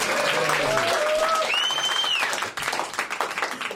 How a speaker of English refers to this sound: Do we have a big round of applause for the panel?